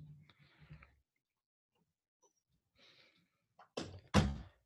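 A door thuds shut, slammed by Cooper pushing it with his nose: a few soft muffled bumps at first, a quiet pause, then two loud, sharp thumps in quick succession.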